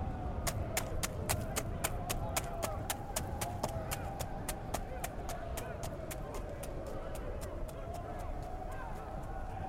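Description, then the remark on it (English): Horse hooves clip-clop in a steady, even rhythm for the whole stretch, crisp, over a constant low droning rumble in the background. “Shut up, stupid horse.”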